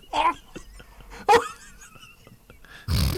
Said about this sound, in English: I do want to let you know that we did get a new fart button.